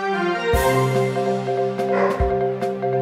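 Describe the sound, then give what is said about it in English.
Dogs trying to break out bark a few times in short, loud bursts, spaced irregularly over a sustained, droning tonal background, with nobody talking. “The dogs are trying to break out.”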